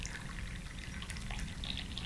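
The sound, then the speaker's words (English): Liquid pours steadily into a cup for about two seconds, a continuous soft trickle with bright splashy flecks over a low rumble, fairly quiet, with no one talking. “Pour in my cup.”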